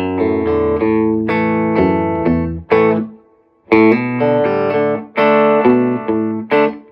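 An electric guitar plays a loud, rhythmic riff of ringing notes, hammering on the second fret of the low E string using pick and fingers, pausing briefly midway before the pattern resumes. No one speaks.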